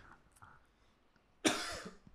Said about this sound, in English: Yeah, cough it out, baby.